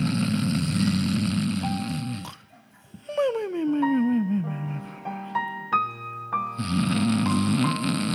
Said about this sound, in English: I'm just going to stretch onto the bed because I am a good person and I deserve good things. I'm just yawning and now I'm just going to slowly fall.